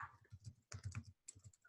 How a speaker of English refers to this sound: Some furious typing going on. I'm trying to do it as quietly as I can. I just want to see when Toy Story Land, also known as Toy Story Playland, opened at the Walt Disney Studios Park in 2010.